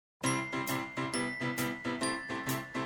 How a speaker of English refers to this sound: I just love the holiday music. Everyone. Jingle bells.